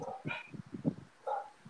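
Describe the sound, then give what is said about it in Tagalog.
A dog barks a few times from another room, the muffled yaps faint and distant, arriving in short uneven bursts. “Meron tayong audience na aso. Tumatahol. Naririnig.”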